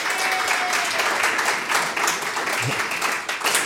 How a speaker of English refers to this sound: Big round of applause.